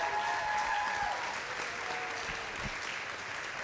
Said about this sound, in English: Will you give her a round of applause?